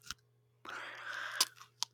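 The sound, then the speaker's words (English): A crisp crunch of someone biting into a jalapeno pepper: a sharp snap, then about a second of wet crackling crunching, ending in a couple of quick clicks. No talking. “Are we going to do a 3-2-1 crunch?”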